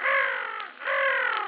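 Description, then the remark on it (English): Two drawn-out, harsh caws from a crow, one right after the other with a brief gap, loud with no other sounds around them. “Shot at a pigeon and killed a crow.”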